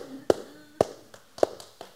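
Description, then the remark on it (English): A few scattered, half-hearted hand claps, three sharper ones and a couple of softer ones, spaced irregularly over a faint background murmur. “No, that's a mercy clap.”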